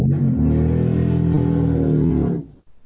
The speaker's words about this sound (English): What the hell was that? Some idiot in my neighborhood with his motorcycle.